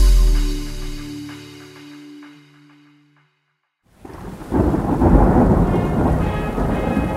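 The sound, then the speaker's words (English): A deep rumble of thunder rolls and fades into near silence, then heavy rain bursts in and pours steadily and loudly, with no voices, evoking a stormy night in Vietnam on 5 December 1956. “Born on a stormy night on the 5th of December 1956 in Vietnam, Latan Van was the second child in a family of 8 children.”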